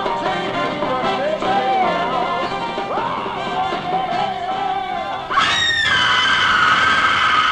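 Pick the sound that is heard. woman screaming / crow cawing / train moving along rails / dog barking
woman screaming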